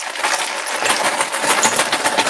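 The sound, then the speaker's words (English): Extra normal-sized chocolate chips are poured into a mixing bowl without a measuring cup, a dense, steady patter of small hard pieces, a continuous bright rattling that stays fairly loud throughout, with no voices. “And just pouring the extra that I got here into,”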